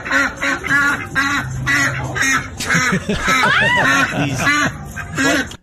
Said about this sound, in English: They're so loud. Six ducks at least. And they never left? They never left.